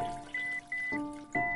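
A hand being rinsed under steady running water, with a string of electronic timer beeps sounding over the splashing flow.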